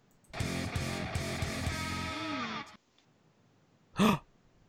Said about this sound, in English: I did a cough.